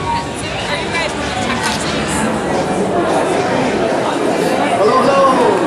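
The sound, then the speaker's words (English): Steady, dense crowd chatter fills the packed East Room of the White House, many overlapping voices blending into a loud, continuous hubbub with no single speaker standing out, as President Biden, joined by Vice President Harris, signs an executive order on artificial intelligence on October 30, 2023. “And that afternoon, as the president was joined by Vice President Harris before a packed crowd in the East Room of the White House, the vibe was celebratory.”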